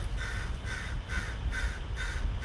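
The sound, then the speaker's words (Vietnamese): A crow outside the door caws repeatedly, about five harsh, evenly spaced calls in quick succession, fairly loud, over a low, steady background rumble with no one talking. “Trời, cái con mọi người có nghe thấy con chim mà nó kêu la sùm ở ngoài cửa mình.”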